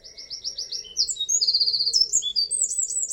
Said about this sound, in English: Let's sort of change it up a little bit, because the next bird on our list is the wren. So can we just hear what a wren sounds like?